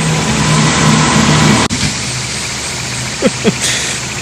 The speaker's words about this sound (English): Oh shit, here comes another one. Here comes a fire truck.